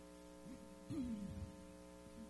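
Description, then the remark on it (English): A steady, low electrical hum from a sound system during a church service drones continuously, its buzzing overtones unchanging, with a brief faint wavering tone rising and sliding down partway through. “You turn that down just a little bit. I've got a humming I can hear.”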